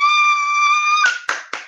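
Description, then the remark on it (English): A steady, high-pitched held tone lasts about a second, then gives way to three sharp hand claps by a woman, spaced roughly a quarter second apart, each loud and crisp with a short ringing tail. “Wow, she's clapping.”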